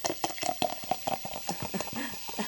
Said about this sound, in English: It's a sparkling water, and that's why the sound.